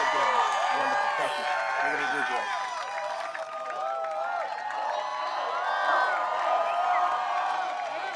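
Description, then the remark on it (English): A large rally audience cheers and applauds steadily, with whoops and shouted voices layered over continuous clapping, loud and sustained throughout. “It doesn't sound too much like the audience was booing.”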